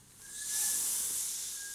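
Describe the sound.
A person hisses through their teeth, making a steady, bright, breathy sound that swells after a moment and holds, with a faint thin whistle running underneath. No talking.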